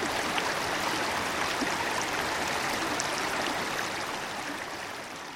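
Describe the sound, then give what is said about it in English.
A mountain stream of the upper Chattahoochee rushes steadily over rocks, a dense, continuous wash of water sound that stays even throughout, fading slightly toward the end. “Soon it's become a full-fledged mountain stream, home to rare speckled trout.”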